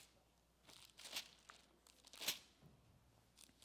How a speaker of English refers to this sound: I love the sound of turning paper. You young guys don't understand that.